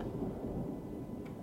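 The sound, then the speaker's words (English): A deep, steady rumble of storm thunder rolls on without a break, heavy in the low end with a faint hiss of rain above it. No one speaks. “As she walked into the storm, perhaps she would see a beast that would favor her shaven legs.”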